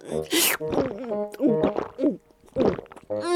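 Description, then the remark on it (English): A voice imitates Snorty Pig, a pig in a story, greedily gulping a bottle of milk: a quick run of wet, throaty swallows and snorty grunts, rising and falling in pitch, with short pauses between bursts. “Gulping greedily, Snorty Pig finished all the milk.”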